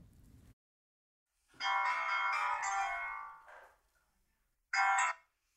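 A phone rings on an outgoing call to a found adoptee: one long electronic ring followed by a pause, then the start of a second, shorter ring. The sound is clear and steady, with no talking.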